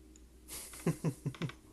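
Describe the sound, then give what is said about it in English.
Four crisp computer mouse clicks in quick, slightly uneven succession, fairly loud after a short burst of soft rustling noise, with no one speaking. “All right, I'm going to do a little bit of clicking.”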